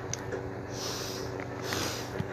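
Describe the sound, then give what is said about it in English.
Two breathy, airy blasts of someone blowing their nose, with a short pause between them and no talking. “You know, to blow my nose.”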